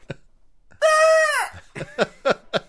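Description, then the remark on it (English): A goat lets out one loud, strained, drawn-out scream, followed by a quick series of shorter, harsh bleating bursts. “Or a goat screaming. It could be the screaming goat.”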